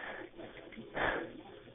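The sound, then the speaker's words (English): Heavy, breathy exhalations over a muffled telephone line during a 911 emergency call to Grapevine 911, with one louder, rasping breath about midway through against a steady low background hiss. No words are spoken. “I'm just getting heavy breathing on the phone and I need someone to talk to me, so please send both.”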